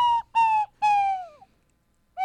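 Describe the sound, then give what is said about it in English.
A slide whistle, played as an attempted apology, toots two short notes, then a longer one that droops downward in pitch, before a fourth note begins. The tones are loud and clear, with no talking. “I think he's trying to make an amends here through the slide whistle.”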